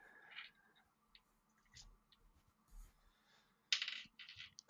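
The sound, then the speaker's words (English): Dice rattle and clatter as they are rummaged through while someone looks for dice to roll a D100, with scattered clicks and a sharper burst of rolling near the end, moderately quiet with no talking. “He's finding 100 dice right now.”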